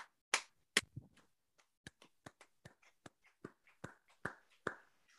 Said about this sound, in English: And now, even though the series is quite old at this point, I'm still going to do a round of applause.